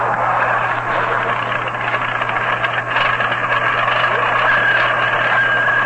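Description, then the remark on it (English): A car engine runs roughly with a steady rattling sputter and a low constant hum, fairly loud, continuing without pause and with no voices. “Ach, der engine ist ein Klinker. Klinker? Yeah, it's been gespluttering all über der Autobahn.”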